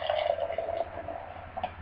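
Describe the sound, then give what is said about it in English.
Beer pours steadily from a large 32-ounce crowler can in a continuous gurgling, fizzing stream that softens after a moment, leaving a quieter hiss with a brief bubbly burst near the end. “It's a big 32-ounce can. We're going to get a shot of me holding this can. Mm-hmm. All right, I'm going to pour.”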